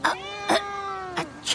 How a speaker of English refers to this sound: Yeah, I hope you don't mind all of my cats. There's only about 35 of them. Oh, I see there's a lot of felines here.